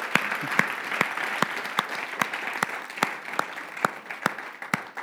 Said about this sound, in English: So can we give all three of them just a round of applause and just a thanks?